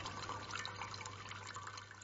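A thin, steady trickle of rainwater runs off a tarp, angled with a small stone, into a small cup, a soft continuous splashing with faint bright drips and a low hum underneath, with no voices.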